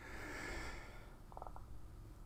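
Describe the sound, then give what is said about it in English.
A single forceful sneeze bursts out, a loud breathy blast that fades within a second, followed by a few faint clicks and near-silence. “Did I got you all to sneeze?”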